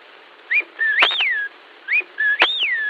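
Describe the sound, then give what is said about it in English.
A whip-poor-will call, given twice: each phrase has a short note, a brief middle note, then a loud, sweeping clear whistle. The calls stand alone, with no talking. “The English whip or will.”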